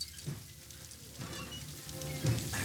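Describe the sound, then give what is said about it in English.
Steady, soft rain hisses across the whole scene of a Godzilla movie, a faint continuous patter with a low rumble underneath and no voices. “Well, it's raining.”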